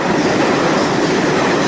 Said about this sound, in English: Sure, but hold on. L train's coming through the restaurant.